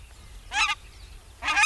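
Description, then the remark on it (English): A nene, an endangered Hawaiian goose, gives two nasal, honking calls, the second arriving after a short pause, with only faint background noise between them. “Most state birds are native, though, and common, except for Hawaii's nene, a type of goose that's endangered.”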